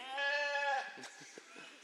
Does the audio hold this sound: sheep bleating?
yes